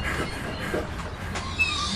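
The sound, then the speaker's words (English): A school bus for Clinton High pulls up with a steady, heavy engine rumble and road noise, while faint high-pitched brake squeals chirp near the end. No one speaks. “This bus runs on a schedule.”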